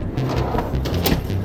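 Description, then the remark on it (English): An aircraft cockpit door opens with a few short mechanical clunks and a sliding scrape, over a steady low engine-like rumble. “open the cockpit door.”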